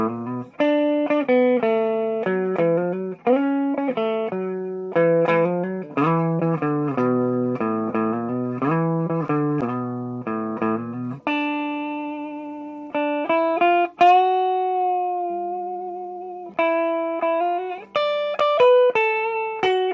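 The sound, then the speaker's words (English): Instrumental music with a busy run of quick notes, then longer held tones where one note is bent upward in quarter tones toward another, clashing hard and sounding slightly out of tune. Loud, with no voices. “Here, there's more of those quarter tones, right? So he's bending one note all the way up to try to match the other note, but they're not quite the same notes.”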